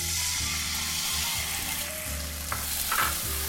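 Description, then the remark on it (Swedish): A loud, steady sizzle as soy sauce is added to a hot pan during cooking, crackling and hissing continuously, with a couple of brief louder pops and spatters near the end and no talking. “Jag tar sojan i min hand. Kolla, det har redan börjat få färg. Jag tillsätter sojan.”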